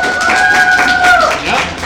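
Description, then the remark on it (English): Scattered, thin applause from a small live audience voting by applause, a handful of irregular claps spread across a couple of seconds, with a steady whistle-like tone running through the first half. “If it's Iron Man and Rescue, applaud now.”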